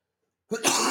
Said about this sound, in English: Excuse me again. I'm coughing.